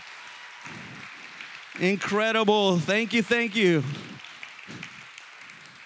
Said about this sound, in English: So, if you're a junior high or a high school leader, why don't we just stand up? If you're a leader, these people pour their hearts and souls out to serving this generation. Why don't we give a hand clap for them?